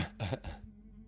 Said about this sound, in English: Yeah, Asajj comes in and is like, like makes her, not that. She tries to clear her throat.